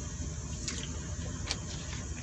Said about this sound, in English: Got to take a little, you know, sip of the water.